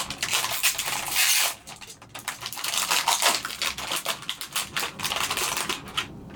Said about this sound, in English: I have some avocado oil and sea salt roasted seaweeds next. Just gonna open these really quick.